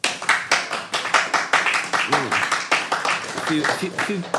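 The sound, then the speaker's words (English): An audience votes by applause for joining the Klingon Empire, bursting into sustained, dense applause, many hands clapping at once in a loud steady patter, with a few short whoops and cheering voices rising above it. “If you think that we should join the Klingon Empire, applaud now.”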